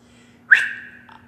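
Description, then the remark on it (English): A single sharp human whistle, a father calling his two young sons in the primate house of a zoo, bursts in loudly, holds a steady high note for about half a second, then dips lower and fades. Nothing else accompanies it except a faint background hum. “I whistled.”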